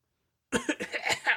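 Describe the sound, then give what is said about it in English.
A 12-year-old girl has a quick run of harsh, raspy coughs, about five bursts in rapid succession, fairly loud after a moment of silence. “She then had a coughing fit.”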